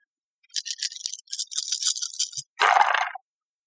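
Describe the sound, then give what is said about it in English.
Many dice rattle busily in a cup for about two seconds, a crisp, bright clatter, then spill out in one louder, fuller burst of tumbling and knocking before falling silent. No voices. They are rolled in a game where a roll of 20 is needed. “So I should roll all the dice.”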